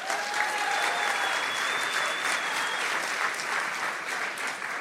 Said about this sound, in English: I have no idea why people clapped there. Because you've written 20 fucking books, that's unreal.